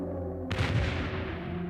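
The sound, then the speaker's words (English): A low rumble gives way to one sudden, heavy bomb blast nearby, its deep booming roar spreading out and lingering loud and close, the huge explosion shaking the main building of the Gutharzwalde estate. No one speaks. “One huge explosion shook Gutharzwalde's main building.”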